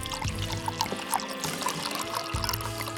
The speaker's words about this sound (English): He decanted the cheap wine and winced as he poured some into Christophe's glass.